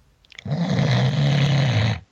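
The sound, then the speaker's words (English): One long, loud snore rumbles, a rasping drone that holds steady for well over a second before cutting off. It stands alone with no voices around it. “And as they're sleeping, they hear a crazy snoring person.”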